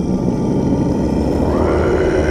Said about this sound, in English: Y'all notice the ground beneath your feet start to move and shift. And you hear a deep, colossal, bellowing, rumbling roar.